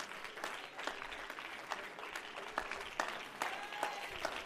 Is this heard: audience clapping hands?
yes